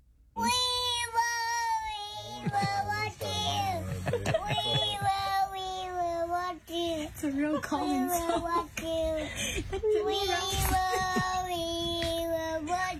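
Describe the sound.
A toddler sings in a high, wavering voice to soothe his baby sister, holding long notes and sliding between pitches, continuing loudly and unevenly with brief breaks throughout.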